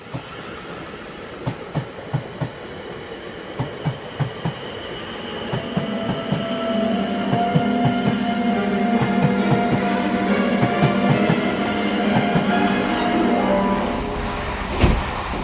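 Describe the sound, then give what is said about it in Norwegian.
A train to Oxford rolls along the rails with a steady clickety-clack of wheels over track joints, then the rumble swells into a continuous roar with a faint squealing hum, no voices present. “For å finne gammel litteratur om den hellige gral, setter Lars og Jens seg på toget til Oxford.”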